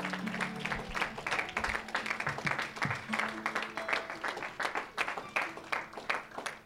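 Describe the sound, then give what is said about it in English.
A crowd claps their hands to the Lord steadily together for several seconds, a dense, continuous patter of many hands with faint voices mixed in underneath. “Can we clap our hands to the Lord today?”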